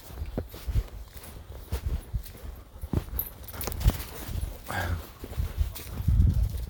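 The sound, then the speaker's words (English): Excited dogs run around on an early-morning walk, their paws crunching and scuffling through crispy dry leaves left over from autumn on the ground of a hazel grove, in quick irregular bursts, with brief excited panting and a short whine mixed in. No one speaks. “Excited dogs, panting, running around.”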